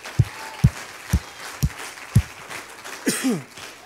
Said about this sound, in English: Give God a big 10-second hand clap in the house right now. Hallelujah. Come on, somebody give him a shout of praise. Somebody shout with a voice of triumph right now.